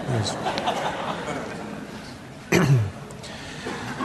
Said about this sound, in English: I'm going to cough here, and I would like to save everybody's hearing. That felt good. Did you ever have a cough get caught right about here, and it could go either way?